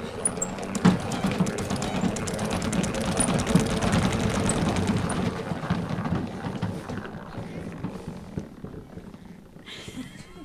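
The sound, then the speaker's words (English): A salad spinner spinning the excess water off washed lettuce whirs steadily with a dense, rumbling rattle for several seconds, then gradually winds down and fades out near the end. “We shake it, give a good spin, so it'll get all the excess water off of it.”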